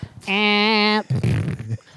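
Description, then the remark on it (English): A man imitates a fart with a loud, buzzy, sustained mouth noise lasting under a second, followed right away by a short burst of voiced talk or laughter. “Yeah, the way he simulates a fart noise.”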